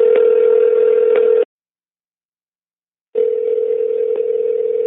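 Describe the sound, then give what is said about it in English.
A telephone call to Yo-Yo ringing through: a steady, buzzy ringback tone sounds for about a second and a half, falls silent, then starts again. No one speaks. “Thank you for answering our phone call.”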